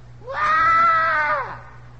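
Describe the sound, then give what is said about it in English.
A voice imitates a cat's yowl heard at about 11:45 at night: one drawn-out, wavering wail of about a second that rises, holds and falls away, sounding much like a human scream. A low steady hum runs underneath. “that sounded like someone screaming for help. My wife goes, no, it was a cat.”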